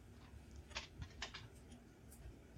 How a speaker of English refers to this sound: I need to plug my keyboard back in.